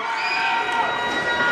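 An angry crowd of basketball fans at a Cedarburg versus Nicolet game yells and jeers after a foul call, a dense, continuous roar of many voices, loud and steady throughout with no single speaker standing out.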